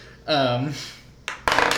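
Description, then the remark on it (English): A short vocal sound, then two dice clatter and rattle across a hard tabletop in two quick bursts, the second a busier tumbling rattle that runs to the end; the dice are rolled for damage in a tabletop game and both land on ones. “Both of the dice I four just rolled...”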